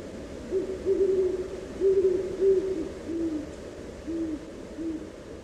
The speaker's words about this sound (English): Somewhere, an owl calls, "Ooh, ooh," and the vastness becomes larger still.